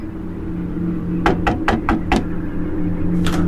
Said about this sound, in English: A lady was knocking on the door, bashing on the door, let me in, quick, let me in.